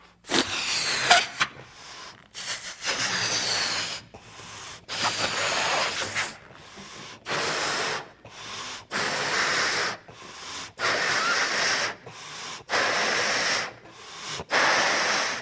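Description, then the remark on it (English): A person blows up a balloon with a circle drawn on it, using a series of long, forceful breaths, each airy rush separated by short pauses for inhaling, with no talking. “Now, can you see, though, that this balloon is actually symbolizing creation expanding, and I'm blowing its going.”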